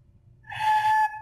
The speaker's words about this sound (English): Oh, good. Flute noise. Like a train.